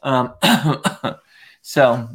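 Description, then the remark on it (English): A run of harsh coughs and throat clearing brought on by high ragweed pollen in Dallas, several rough bursts with voiced grunting between them, a brief pause, then one more throaty clear at the end. “I'm still a little the ragweed is like crazy right now. We've all been coughing.”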